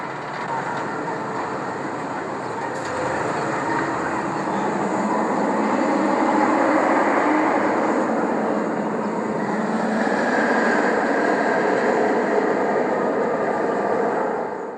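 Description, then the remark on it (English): A B&M roller coaster roars along its track, heard while waiting in line as the ride passes overhead, in a loud, continuous rumble that swells slightly partway through and holds steady, with a rattling, train-like grind and no talking. “Heading towards that line for a B&M's world class creation, you can hear that iconic roar of the track get louder and louder.”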